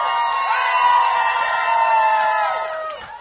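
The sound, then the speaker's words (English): A large crowd shouts and cheers together in a sustained, loud roar of many overlapping voices, holding steady for a few seconds before starting to fade. “He's risen, and because of that, this is a morning for shouting.”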